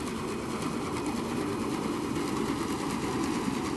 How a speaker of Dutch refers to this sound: Ik hoor een soort brommetje of zo. Nou, wat je volgens mij hoort hier zijn de motoren van het schip. Dat is een beetje dat lage geluid wat je hoort brommen. Dat zit vooral rond de 125 hertz.